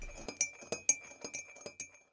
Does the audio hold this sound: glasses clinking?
yes